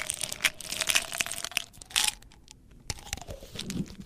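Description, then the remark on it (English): Pills rattle inside a medicine bottle in a run of irregular, crunchy shaking bursts with short pauses between them. The clatter is bright and fairly loud, and no one speaks. “Okay, the first person to get this one correct was Spartanite with pills, H2SED medicine bottle.”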